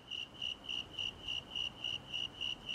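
A snowy tree cricket chirps in a steady, even rhythm, about four high, pure pulses per second, clear and close against a faint outdoor hiss with no voices.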